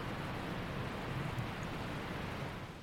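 Steady rain falling in a city in a continuous, even hiss with a low rumbling wash beneath it, fairly quiet and unbroken throughout, with no voices.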